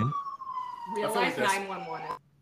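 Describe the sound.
An emergency vehicle siren wails outside in a long, slowly falling tone, fairly faint, while people talk over it for most of the moment.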